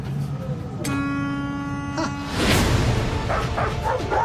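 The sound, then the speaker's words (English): A steady droning tone gives way to a loud dog bark, followed by a few shorter, quieter yips over constant background rumble. “I learned to talk dog. I don't think it likes me.”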